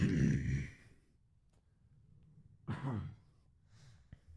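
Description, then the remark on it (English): A heavy, breathy cough opens, followed after a pause by a second, shorter cough and a faint third one, with a small sharp click near the end. No one speaks. Someone is drinking Fanta and coughing. “Are you just drinking Fanta and then also coughing?”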